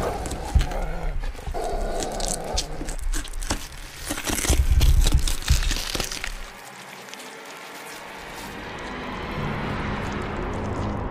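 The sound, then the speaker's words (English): A dog named Buster stirs, with short whimpering sounds over steady rustling and crinkling, as if moving through leaves or debris. No one speaks. “Man, let me go check on this dog real quick.”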